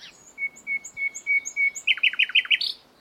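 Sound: water thrush song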